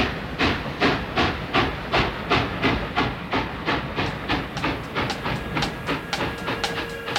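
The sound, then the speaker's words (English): A train rolls steadily along the rails with a rhythmic clickety-clack and a constant hissing rumble, loud, with no voices over it. “And now we're gonna jump on a train and see where we end up.”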